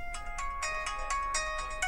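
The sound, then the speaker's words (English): A phone ringtone plays a quick, repeating electronic melody of bright tonal beeps, steady, with no voices over it. “Her phone rings, she answers it.”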